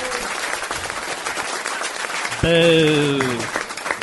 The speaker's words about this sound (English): Can we have a big round of applause for our very special guest